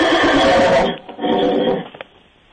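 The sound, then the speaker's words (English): A rabid horse with a saddle and stirrups, brought into an office building, neighs loudly, a long quavering whinny that breaks off, then continues in a second, softer trailing call before fading out. “Oh my God. Was that the horse?”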